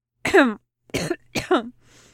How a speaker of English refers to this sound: He coughs, groans.